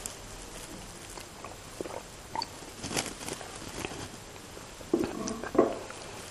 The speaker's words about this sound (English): And I'm just going to take a drink of water. I've got water in the shrine.